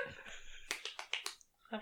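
A short burst of hand clapping, about five quick, sharp claps in a row, then a pause and one more clap, fairly soft and close with no voices.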